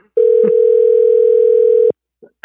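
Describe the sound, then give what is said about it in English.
A steady, loud telephone dial tone hums for about two seconds, then cuts off abruptly, followed by a couple of faint clicks and a short burst of noise. “Don't make me make a phone call.”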